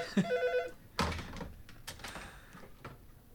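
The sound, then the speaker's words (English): A telephone rings briefly with a caller calling back, one bright, buzzy burst near the start, followed by a few sharp clunks and clatters like the handset being picked up. No one speaks. “And there he is right now. And I don't know how to answer that phone, so that's super awkward.”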